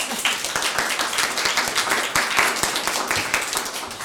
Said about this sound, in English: Let's give her a clap.